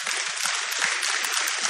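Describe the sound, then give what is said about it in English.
A steady burst of audience applause for an announcement of 'HDC': dense overlapping claps forming a loud, even wash of noise that holds for under two seconds and then cuts off abruptly. “You can clap for that.”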